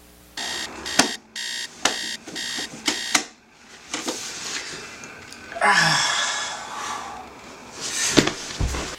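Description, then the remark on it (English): An alarm clock rings in a quick series of loud, buzzy electronic bursts that stop and start for a few seconds, followed by softer rustling and movement noises. “Don't forget to set your alarm.”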